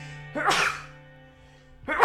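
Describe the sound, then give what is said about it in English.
A sharp sneeze bursts out, followed after a short pause by the start of a second sneeze, with a steady low hum running underneath. “I gotta sneeze.”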